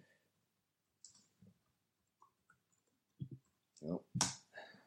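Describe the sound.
A few scattered, quiet keyboard taps clicking at irregular intervals as someone types a Google search, followed by a short burst of someone's voice near the end.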